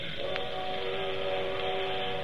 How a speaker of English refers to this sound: Oh, that's the only thing I don't like. Them train whistles.